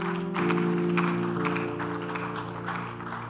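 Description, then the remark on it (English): An audience claps steadily for a few seconds, a dense patter of many hands at an even loudness, with a sustained low musical chord held underneath. “So if somebody goes out of his way to do this difficult work where our reward is in heaven, I think they deserve some clap right now.”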